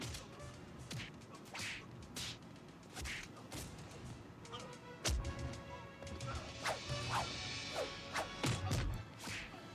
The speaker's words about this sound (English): They went crazy with the punching sound effects, didn't they, on this? Oh, yeah. No, the sound effects on this are absolutely ridiculous. It's like the Foley guy was just doing them with his mouth or something.